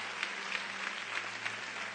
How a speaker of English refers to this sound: If you got anything out of the word, give the Lord a hand clap if you would.